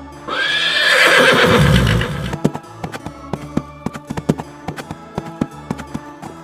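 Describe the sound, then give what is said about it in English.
A horse lets out a loud, drawn-out whinny that falls in pitch, then its hooves pound in a quick, uneven galloping rhythm of sharp thuds. “And if you hear galloping horses, fly as fast as your feet can take you.”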